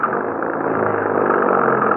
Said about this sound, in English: Please, hurry. Get the car started. All right. All right, get inside. Maybe it'll go now. Let's hurry.